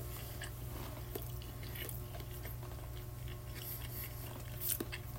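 A person eating, chewing and munching with irregular soft crunches and wet bites repeating over a steady low background hum, and no one talking.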